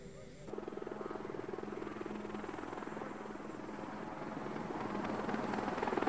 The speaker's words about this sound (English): These helicopters will actually taxi down the runway and take off. These are rather large helicopters. President Bush uses helicopters like this to fly back and forth.